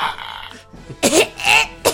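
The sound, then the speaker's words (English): A voice mimics Reek's fit of coughing as he wakes after water is squeezed from his chest: three harsh, rasping bursts, after a brief tonal hum at the start, with short gaps between the coughs. “A bunch more water comes out and a little bit of vomit. And Reek coughs and wakes up.”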